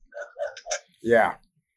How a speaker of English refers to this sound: do you have a dog over there? The neighbor dog. I'm in my backyard.